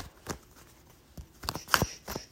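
A small travel deck of tarot cards is shuffled in a few quick, crisp bursts of papery flicking and riffling, irregular in rhythm and fairly soft, with no voices over them.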